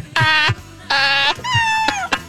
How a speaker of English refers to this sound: Those are very tiny, small, quiet kittens. It almost sounds like they're real in your studio.